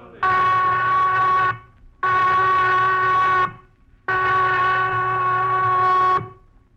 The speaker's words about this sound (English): The prison whistle, Johnny, cutting Christmas out of the air like a knife. Lights out in 15 minutes, no matter what.